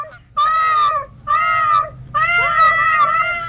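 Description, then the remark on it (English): A human voice imitates a cat, speaking cat language in a little conversation with Tom Tom, giving three drawn-out, wavering meows with high harmonics and short pauses between them, the last one longest and rising and falling in pitch. “Can you give us an example of your using cat language? Certainly. Tom Tom and I will have a little conversation about your show.”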